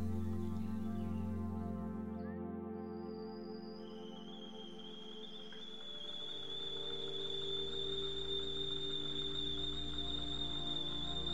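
A kettle on a stove starts to whistle, its shrill tone rising in pitch then holding a loud, steady note over a low bubbling rumble of boiling water.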